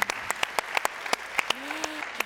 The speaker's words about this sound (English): We weren't sure we could get Noah here on such short notice, so can we give him one more round of applause? Yeah. Because that was a great story.